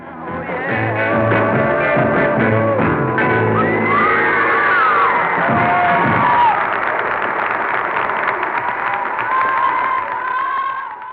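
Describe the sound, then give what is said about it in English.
A large live crowd at a BBC show cheers and applauds loudly and continuously, a dense wash of voices and clapping with occasional whoops rising above it, sustained for the whole stretch. “Right, when they stop and there's those, yeah, kind of not the high-end scream, but just a great appreciation of it.”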